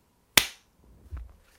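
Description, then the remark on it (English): A single sharp hand clap rings out, crisp and bright, then decays quickly, followed by a few faint low rustling sounds. “I was actually, I was a little bit disappointed in the quality of the clap.”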